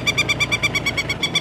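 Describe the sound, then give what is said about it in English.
A peregrine falcon circling overhead on a mountain gives a rapid series of sharp, harsh calls, about ten evenly spaced notes in a quick steady rhythm, clear and fairly loud with no voices present. “In fact, there he is, circling overhead.”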